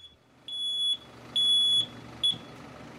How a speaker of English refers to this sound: Ah, they hear the beeping truck and they know to raise the gates. So it's always like this.